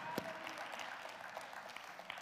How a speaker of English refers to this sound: Somebody put your hands together today and give Jesus Christ a hand clap of praise.